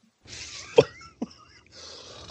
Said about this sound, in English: So, you know, for everybody out there listening, you could tell I still got this goddamn cough. It won't go away. Bronchitis is a hell of a drug.